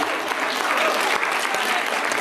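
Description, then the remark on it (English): A steady burst of audience applause, many hands clapping together in a dense, even patter that fills the room at moderate loudness for a couple of seconds. “I don't even get any applause from anybody.”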